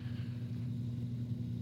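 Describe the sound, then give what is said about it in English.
A car engine rumbles loudly and steadily outside as someone drives by carelessly, a deep throbbing drone with layered low tones that holds at an even level for the whole moment, with no voices. “Sounded like somebody out there was driving like a moron.”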